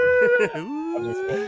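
A siren sound effect wails with a steady, slowly rising tone over a second and a half, while voices talk over it.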